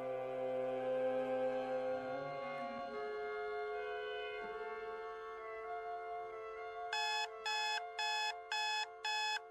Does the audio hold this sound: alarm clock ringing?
yes